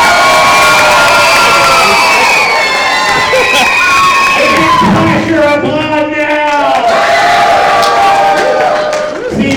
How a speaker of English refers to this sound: Real quick, if it is Red Hood, applaud now!